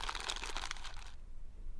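Brisk crinkling of the wrappers from reams of printing paper being handled for about a second, a dense crackly rustle that stops abruptly and leaves near silence.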